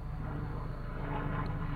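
Loud, steady low-pitched rotor and engine drone from a gigantic helicopter flying overhead at a cemetery, shaking a car, a thick rumbling wash with faint rhythmic beating and no voices.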